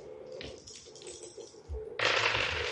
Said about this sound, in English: Roll for damage. So that is 1d8 and 2d6. Okay. Let's see. Plus 5.